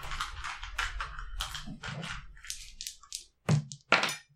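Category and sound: twelve-sided die being rolled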